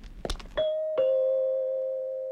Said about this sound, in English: They all listened and heard the car stop at the gate. Then footsteps came up the path and the front doorbell rang.